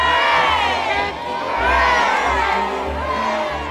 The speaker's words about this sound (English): Three cheers for the Queen! Hip, hip.